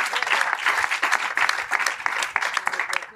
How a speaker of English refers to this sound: Let's give him a round of applause up here.